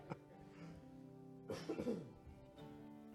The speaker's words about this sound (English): So a little bit hard to do breath prayer right now when you're like coughing all the time.